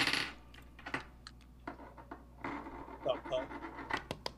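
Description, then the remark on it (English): A coin is flipped in a heads-or-tails game and lands on a hard surface with a few small metallic clicks and a brief ringing clink, fairly quiet, with faint voices murmuring in the background. “Flipping. Oh, I'm down. Coins.”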